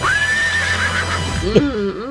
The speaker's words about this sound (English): She's feeling healthy as a horse. Where'd the horse go?